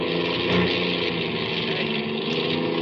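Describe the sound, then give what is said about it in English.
A car engine runs with a loud, rough, continuous drone, holding fairly steady for a few seconds with no one speaking, as the engine is going dead. “I can't get me out of the engine. It's going dead.”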